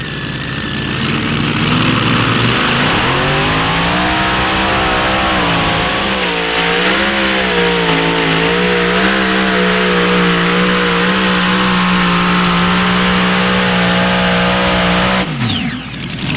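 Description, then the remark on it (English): Twin Hemi engines, mounted facing outboard on a pulling tractor called Jacked Up Relentless, roar loudly during a tractor pull run, revving up and holding a steady, throbbing drone for several seconds before dropping off sharply at the end. “Former semi-truck puller, twin Hemis on this one, facing outboard, calls it jacked up relentless.”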